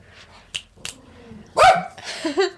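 A dog in the room lets out a loud, throaty bark followed by a whiny, drawn-out vocalization, after a couple of faint clicks and soft background noise.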